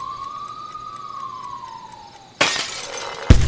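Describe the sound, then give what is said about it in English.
A siren from police cars outside wails in a slow, steady rising-and-falling tone, then a loud burst of shattering glass cuts in, followed by a second sharp crash. “What's going on outside with all those police cars?”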